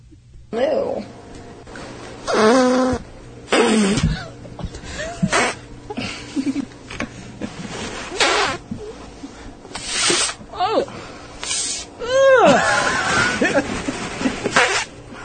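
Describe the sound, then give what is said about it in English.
A rapid string of loud farts during a fart-guessing game, some squeaky with rising and falling pitch, others raspy and buzzing, in irregular bursts over about fifteen seconds, with voices murmuring underneath. “I just have, like, this unknown skill for guessing farts”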